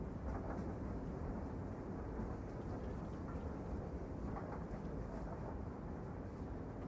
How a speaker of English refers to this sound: Well, I'm on this train.